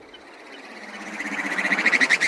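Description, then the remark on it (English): A Swinhoe's snipe calls alone: a rapid, buzzing train of pulsed notes at a fairly high pitch that grows steadily louder and more sharply rhythmic over about two seconds. “This is a Swinhoe snipe.”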